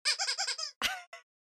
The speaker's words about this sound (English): So also I just wanted to show you, I've been really into these vintage 50s squeak toys. They're not dog toys, but they're squeak toys. And this is one. She's so cute.